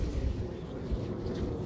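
vehicle, airplane flying overhead

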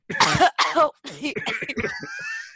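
human body sound, coughing

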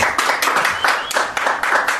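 crowd, studio audience clapping

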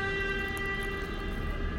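vehicle, truck passing by

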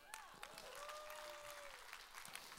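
crowd, audience applauding

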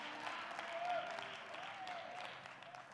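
crowd, audience hand clapping

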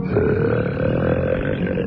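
human body sound, loud burp

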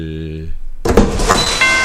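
household object, door being opened

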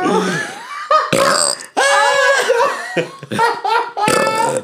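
human body sound, loud burp

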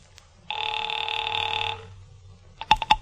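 household object, rotary telephone being dialed

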